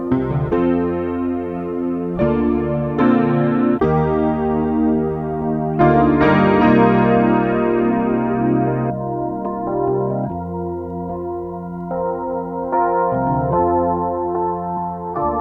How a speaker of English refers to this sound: And then for context, here's how loud the piano is when it's actually in there.